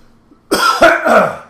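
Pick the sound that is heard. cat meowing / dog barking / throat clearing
throat clearing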